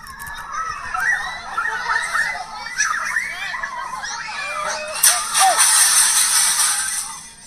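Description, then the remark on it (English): A crowd of children shriek and chatter in high, wavering voices, with parents present. A loud, bright crash of breaking glass bursts in as someone dressed as the New Jersey Devil sprints headfirst into a glass window and shatters it. The crash rings on with crackling high tones as the children's cries continue. “The Devil starts sprinting towards a glass window and the whole thing shatters.”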